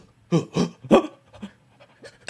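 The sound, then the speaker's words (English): A person imitates a dog panting: three loud, breathy huffs in quick rhythm, followed by several fainter gasps and one last sharp breath at the end. “But the creepiest the dog pant.”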